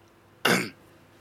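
A single short cough bursts out sharply and fades within a quarter second, fairly loud against a quiet background, with no talking around it.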